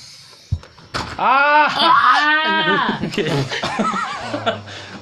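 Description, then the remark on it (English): A loud, drawn-out scream with a wavering pitch runs for about two seconds, followed by softer voices and muffled movement; a sharp knock comes just before it. “Okay, I'm going to need you like screaming like in like 5 seconds.”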